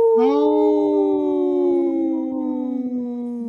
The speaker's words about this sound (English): brought to you by Howling for Wolves, protecting wolves for future generations. Howl!